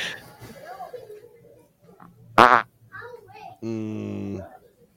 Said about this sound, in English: Dude, you can't fart that much. I'm calling bullshit. Dude, this is a 5-minute video. You cannot fart for 5 minutes in a row.